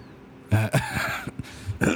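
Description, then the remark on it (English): A loud cough comes in a few harsh bursts, sounding partly like throat clearing, with short gaps between them and no talking. “You've got one of those Mondelez coughs.”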